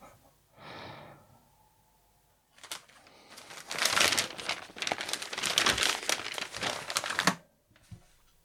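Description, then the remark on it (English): Newspaper pages rustle and crinkle for several seconds, a dense, papery crackling after a brief breathy sound, with no one speaking. “I just got my hands on the paper finally after God knows how many hours.”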